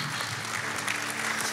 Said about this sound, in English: we can clap for that.